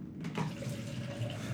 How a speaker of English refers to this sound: Okay, let me fill up this sink.